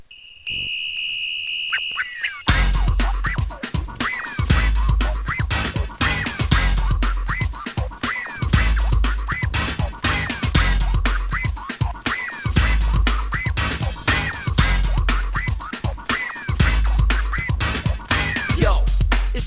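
An early-nineties rap track plays loudly: a brief steady high tone opens it, then a driving hip-hop beat kicks in with punchy, regular bass thumps and busy, bright layered sounds on top.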